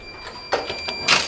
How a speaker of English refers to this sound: So this is my room, and I use the bang bar to open the door. It's like the circular accessible door buttons that you push, but it's vertical so that people who don't have very much function in their hands can just bump into it and then it opens.